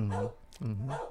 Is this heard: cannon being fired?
no